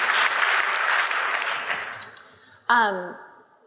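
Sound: round of applause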